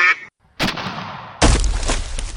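duck quacking

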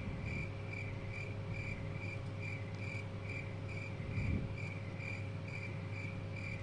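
crickets chirping

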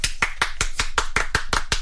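hosts clapping

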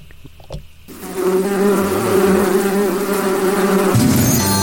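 buzzing bees

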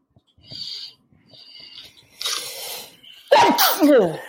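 powerful sneeze

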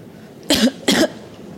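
person coughing repeatedly

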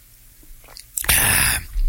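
sipping a drink

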